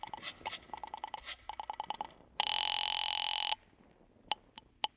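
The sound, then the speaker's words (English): A telephone rings as if heard through the line while someone calls the guard at the gate: quick trilling bursts, then one long steady ring, followed by a few sharp clicks. No voices are heard. “You wait another half minute and then pick up the phone and call the guard at the gate.”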